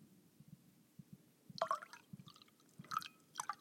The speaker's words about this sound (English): Shit, I just got it all over the table. I can never pour wine without that little bit, that little fucking drip drop.